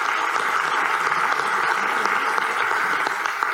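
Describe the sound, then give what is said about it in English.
An audience claps steadily in a dense, sustained burst of applause for working moms that stays loud throughout, with many overlapping hand claps and no one speaking. “So let's have a round of applause for working moms.”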